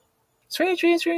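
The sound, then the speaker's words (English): A voice imitates a blackbird's quick alarm chirping with three short, rapid chirp-like calls, loud and evenly spaced after a moment of silence. “But when they go, like they make this like quick chirping sound.”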